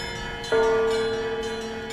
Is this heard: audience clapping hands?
no